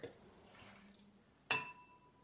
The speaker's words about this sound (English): I'm just smashed a box cutter into a wine glass.